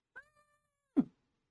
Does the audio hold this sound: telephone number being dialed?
no